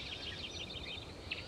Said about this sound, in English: There. It's from a spotted towhee. It's a type of sparrow, but it doesn't really resemble what you might think of as a sparrow. It's quite a bit larger, almost robin-sized.